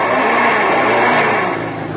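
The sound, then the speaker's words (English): A car engine revs hard in a loud, steady roar as the wheels spin in mud without gaining grip, easing off slightly near the end. No one speaks. “Get some brush, shove it under the wheels.”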